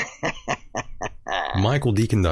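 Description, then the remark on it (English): A bird calls in a run of five short, raspy, evenly spaced croaks, then breaks into a louder, longer burst of wavering, honking squawks. “And the bird agrees.”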